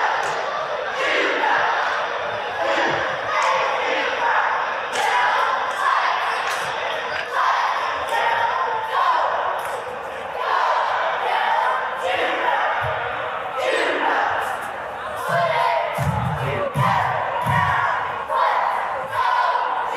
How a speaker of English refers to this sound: And what was interesting about that is Nona Diamond sent us this little bit of audio of the two cheer teams coming together. And let's just listen to that audio. It's really sweet.